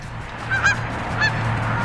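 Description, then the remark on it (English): A goose honks twice, two short nasal calls about half a second apart, clear over a steady low background rumble, with no one speaking. “Can we see what a goose honking sounds like?”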